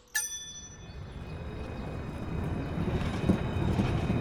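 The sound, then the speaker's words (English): A bright bell dings once, then a tram in Gothenburg, Sweden, rumbles along its rails, the low rolling clatter growing steadily louder, with no voices. “Gothenburg is also known for its tram network, with an annual ridership of just under 1.5 million people and a combined track length of over 190 kilometres.”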